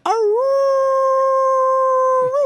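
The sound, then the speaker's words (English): A single long wolf howl, loud, holding one steady pitch for over two seconds before bending at the end. No one talks over it. “The lone wolf.”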